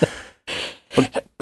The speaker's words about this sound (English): You okay? Yeah. Need a cough button? I need a sign that says, yes, I coughed. No, I don't have corona.